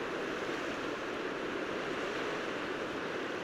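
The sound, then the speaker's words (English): A steady, dense roar of tidal water, huge masses flowing through a narrow passageway, fills the whole stretch, loud and continuous without pause. “This is the roaring voice of tide in a place where huge masses of water flow through a narrow passageway.”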